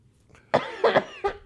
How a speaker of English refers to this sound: COVID sucks, everybody. That lingering cough is just murder.